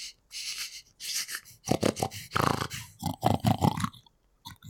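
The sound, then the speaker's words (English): A person imitates a boar sniffling someone all over: breathy, noisy sniffs at first, then a rapid series of grunting snorts, with no actual speech. “Yeah, and as you stop eating the pumpkin, you notice, you know, there's one of the boars now is right next to you, and he's sort of sniffling you all over.”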